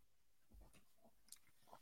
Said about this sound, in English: I was chewing some cashews again.